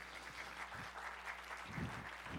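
An audience claps steadily, a dense, even wash of many hands that holds at a moderate level throughout, with a few dull low thumps underneath and no one speaking.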